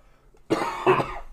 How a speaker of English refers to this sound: I cough at the same time.